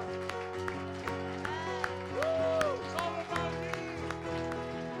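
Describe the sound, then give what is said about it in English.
A church audience claps for Jesus in a steady rhythm over live worship music with sustained keyboard chords and a rising melodic line, the sharp hand claps cutting through at regular intervals. “Come on, we've clapped for the King of Kings and the Lord of Lords.”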